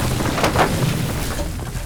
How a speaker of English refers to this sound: The individual pieces of the doorframe began to twist like wet rags being wrung out by invisible hands. Spiderweb cracks erupted across the surrounding plaster. The hinges separated on sheared pins just as the door exploded into a rain of splinters.